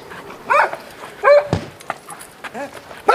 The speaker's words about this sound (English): The delighted barks of Freckles the dog.